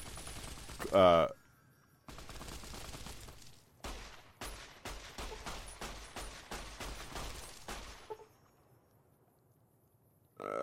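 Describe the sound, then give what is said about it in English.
A video game gun fires at a lobotomite enemy in a rapid burst of sharp, loud shots, a dozen or so cracks in quick succession over several seconds, then stops abruptly. “Boy, this dog gun. Wow, it is flinging caps.”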